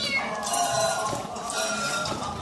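A small female cat being milked meows in a drawn-out, wavering cry, repeating with a couple of rising pulses over about two seconds, clear with no talking.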